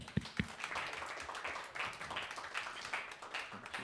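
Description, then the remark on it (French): A crowd applauds steadily, many hands clapping in a dense, crackling patter for a few seconds, with a couple of sharper, louder claps near the start. No one speaks. “On applaudit.”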